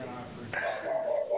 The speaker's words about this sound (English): Somebody's just knocked at the door and the dog's got a little bit aggro. He's like, get away from my house.